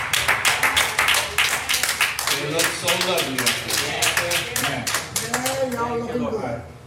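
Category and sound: crowd, audience round of applause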